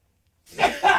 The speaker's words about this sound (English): I'm going to sneeze.